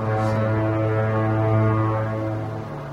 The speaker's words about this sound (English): But the classic shots of San Francisco, and I really wanted to put a foghorn off in the distance. This has been filtered a little bit to kind of clean up some of the traffic noise. You can see the Golden Gate Bridge right there.